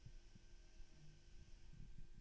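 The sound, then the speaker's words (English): A quiet, steady low hum in an apartment, with faint tonal drones and soft, irregular low thumps underneath, from the pipes and a washing machine running. No one speaks. “You hear the gentle noises of my apartment. You hear the washing machine, the low hums of the pipes.”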